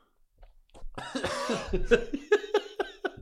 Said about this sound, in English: I have a quick sip of whiskey. Oh God, your eyes will be open right in a minute when you start coughing.